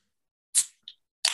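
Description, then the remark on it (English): A beer can, an IPA and barrel-aged sour blend, pops open with a sharp, fizzing hiss, followed by a small metallic click and a second loud burst of foamy spray, with no voices. “What's with you and the exploding beers, man?”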